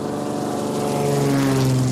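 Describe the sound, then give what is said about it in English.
A small propeller plane drones steadily, its engine hum loud and continuous with a buzzing tone that rises slightly in pitch, with no voices; the plane flies sacks of jagua fruit from an improvised airstrip to Medellin for processing. “With no roads, the only way to send the jagua for processing is an hour-long flight by small plane to Medellin.”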